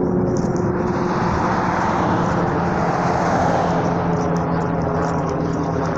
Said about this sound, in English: Fuck you, slow ass helicopter.